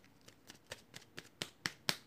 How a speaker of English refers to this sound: So let's get straight into it. Let's get the shuffling of the cards. Okay, here we go. Let me get you another shuffle. Here we go.